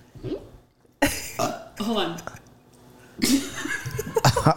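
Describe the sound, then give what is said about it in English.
A person makes several short, croaky, burp-like neck fart noises in sputtering bursts, with a bit of chuckling between them. “Can I please do my neck fart?”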